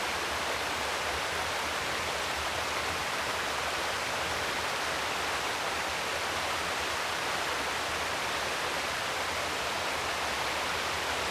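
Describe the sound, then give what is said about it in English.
A very low river flows steadily beneath a large, sprawling beech tree during a very warm summer. Its water makes a constant, full rushing hiss that stays even throughout, with no voices or other sounds breaking through. “I'm underneath a huge, sprawling beech tree, casting a lot of shade, and the river has never looked so low to me as it does today.”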